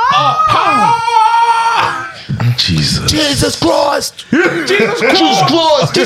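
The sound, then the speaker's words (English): A loud, high-pitched scream from a video rises and wavers for about two seconds, then breaks off into excited talking and chuckling voices. “And then that scream.”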